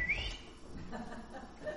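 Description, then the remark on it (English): A voice imitates a father's shrill whistle calling his child home: one short, piercing rising note right at the start, followed by a faint, brief tone near the end over quiet background rumble. “He when he told me to be home at a certain time, and I got past that time, and I would hear this shrill whistle.”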